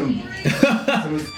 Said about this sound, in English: Oh, that's so weird. The radio's just come on.